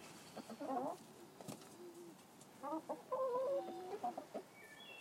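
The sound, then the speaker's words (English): Several chickens on a homestead cluck and murmur in short, uneven bursts, with a few sharper calls mixed in against a quiet outdoor background, as they are checked on during morning rounds and brought kitchen scraps; no one speaks. “We got chickens as a sort of taking things up a level in our food preparations.”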